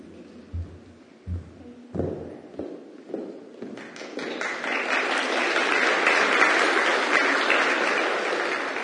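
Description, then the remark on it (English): Applause from an audience as a guest speaker is called up for the evening starts with a few scattered thumps and claps, then swells after a few seconds into a steady, dense wash of clapping that stays loud to the end. “You're already clapping.”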